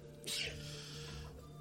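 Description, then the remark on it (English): A single sharp sneeze bursts out early, a quick hissy blast that fades into a low steady hum, with a brief breathy noise at the very end. “Bless you.”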